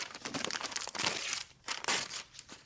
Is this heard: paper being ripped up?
yes